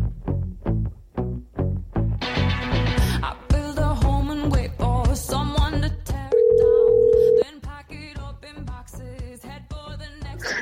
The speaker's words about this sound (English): Let's pick up the phone and give him a call.